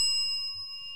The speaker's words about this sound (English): Now, Shalana, can you hear this bell?